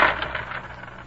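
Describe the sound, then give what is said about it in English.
Coins drop onto a hard floor, a quick cluster of clinks and clatters that settles and fades within about a second, with no voices. “You dropped some coins”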